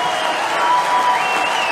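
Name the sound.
audience applause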